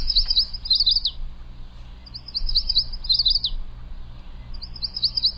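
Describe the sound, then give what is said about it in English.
A yellow warbler sings three repeated high, sweet phrases of quick rising-and-falling notes, each about a second long with pauses between, clear over a low steady background hum. “No, and I'm going to take a guess that's the yellow warbler. That's a pretty good guess, yeah.”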